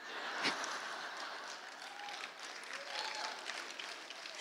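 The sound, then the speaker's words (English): An audience claps together as a clap offering to Jesus, a dense, steady wash of applause that holds at an even level throughout, with a few faint voices and whoops rising briefly above it. “Come on, give Jesus a big clap offering.”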